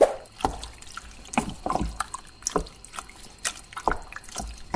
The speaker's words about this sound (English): I'm just stirring it around. I poured the tomatoes in and I'm just stirring it with a bit of water.